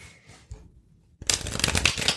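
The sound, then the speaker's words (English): After a brief near-silent pause, a deck of playing cards is shuffled, a loud, dense burst of rapid crisp flutters and snaps lasting about a second. “Is shuffling one of those ASMR sounds?”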